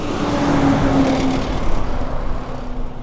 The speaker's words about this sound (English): The thousands of heavy trucks they've brought in destroy local roads. Here's what it sounds like midday on a main street.